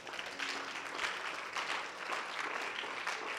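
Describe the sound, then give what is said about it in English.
A church audience claps steadily, many hands overlapping into a dense, continuous patter at a fairly even loudness for a few seconds. “Clap your hands.”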